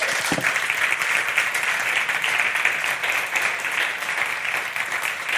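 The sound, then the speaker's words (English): A crowd claps steadily in dense, sustained applause that holds at an even, fairly loud level for several seconds without a break. No voices stand out over the clapping. “Why don't you give her a big round of applause?”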